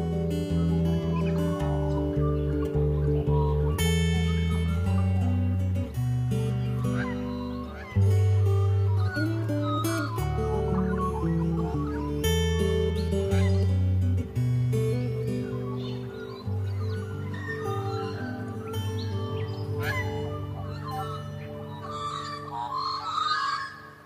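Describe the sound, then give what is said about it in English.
Magpies hanging about warble and call with bright, wavering notes, continuous, layered over a steady bed of sustained musical chords that run throughout. “Others just hung about singing.”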